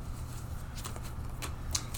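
Soft, papery riffling of a deck of cards being shuffled, with a few crisp flicks standing out over a low, steady hum. Quiet, with no one talking.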